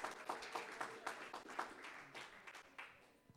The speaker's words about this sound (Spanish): Debo dar un aplauso al Señor. Dele fuerte ese aplauso.